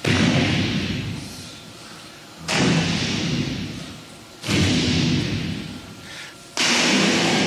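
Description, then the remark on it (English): Four massive, booming thuds of redwood tree sections falling, used as T-Rex footsteps, spaced about two seconds apart like slow heavy footsteps, each with a deep rumbling tail that fades before the next impact. “So this is sections of a redwood tree falling for the footsteps.”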